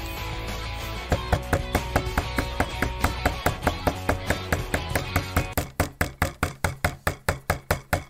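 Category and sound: impact, knocking on a door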